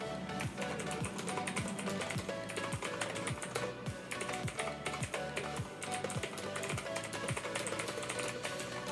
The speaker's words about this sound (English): Yes, that's my really noisy new keyboard that you can all hear. And yes, you all have to live with it now.